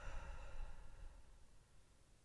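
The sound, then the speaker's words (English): A single breathy exhale through the mouth, like a soft sigh, starting fairly strong and gradually fading away, with no talking. “So we're going to inhale through our nose, exhale through your mouth.”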